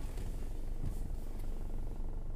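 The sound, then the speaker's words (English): A running car engine idles with a steady low rumble and a small, rapid rattle buzzing through it, continuous with no one talking. “Sounds like a little rattle.”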